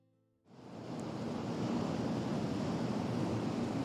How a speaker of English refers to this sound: There's few more evocative sounds than the lapping of the tide and waves crashing against the shore. It instantly conjures up a sense of place, relaxing, pristine beaches, holidays, the best things in life.